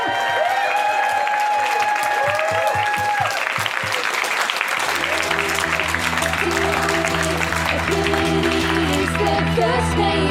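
A crowd claps and cheers loudly, with whoops and whistles rising over steady applause; about halfway through, upbeat music starts and plays beneath the continuing clapping.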